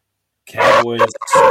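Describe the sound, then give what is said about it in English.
A man's voice gives a gruff, drawn-out imitation of a dog barking as a shout-out for the Dogs team, loud, followed by a shorter second bark-like shout. “That's the shout out for the Dogs I was just giving.”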